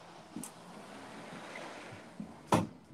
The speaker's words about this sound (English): Goodness gracious, I need to close this door.